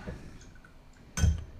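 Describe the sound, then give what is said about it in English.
Soft, light clinks of glassware sound a couple of times, followed by a louder, fuller clunk of glass knocking together, as glasses are filled for a toast. “Oh, so let's load our cannons one more time. Oh, I'm gonna do mine because we have one more toast to do.”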